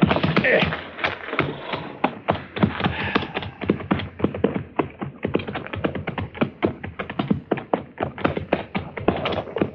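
horses' hooves clip-clopping

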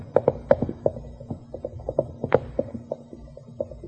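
horse galloping away

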